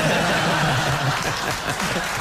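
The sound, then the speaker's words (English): A live audience claps steadily and laughs together, a dense, sustained wash of applause with chuckles mixed in, filling the whole moment. “The crowd like that one.”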